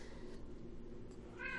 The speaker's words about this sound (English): You gotta be quiet. Shh. He can meow. It's fine.